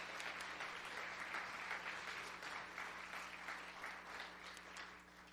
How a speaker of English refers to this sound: Come on, give Jesus a big hand clap today.